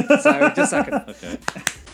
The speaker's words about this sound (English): What I'm going to do is I'm going to do a quick clap